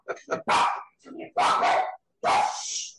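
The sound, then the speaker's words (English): A small female chiweeny dog barks and yaps at someone at the door in a quick, irregular string of loud bursts, some short and sharp, others drawn out, with brief pauses between. “It's a little chiweeny.”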